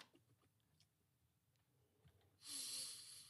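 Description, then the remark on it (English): A sharp, forceful sniff at a glass of bourbon, a breathy hiss lasting about a second, following a quiet stretch with a few faint ticks and clicks. “Or at least stop sniffing it so hard.”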